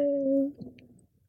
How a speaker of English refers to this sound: Whale songs? Okay.